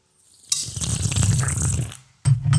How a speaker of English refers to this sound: Did you pour yourself a big boy shot? I think so. Yeah, that's quite a bit.